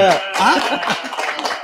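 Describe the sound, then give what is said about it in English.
A short burst of crowd noise, with many voices cheering and chattering at once and some scattered clapping mixed in. It stays loud and dense for under two seconds. “Now crowd noise. There we go.”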